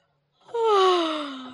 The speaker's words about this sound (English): It's not my fault she's yawning. The baby can't stay up, but I can.